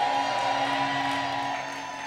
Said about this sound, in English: And he will yet fill your lips with joyful shouting. Let me hear your rehearsal for your joyful shouting.